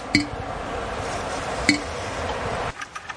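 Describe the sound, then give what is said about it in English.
Two single drops of sap fall into a bucket holding ice, on a warm day, about a second and a half apart, each making a clear, ringing plink over a steady outdoor hiss. “That's a pretty good drip. This bucket might be full by the end of the day.”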